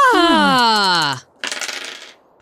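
A ringing, shifting metallic tone fades out, then after a short pause, percentile dice clatter and rattle quickly across a tabletop for under a second, fairly loud, rolled for HP loss in a tabletop game.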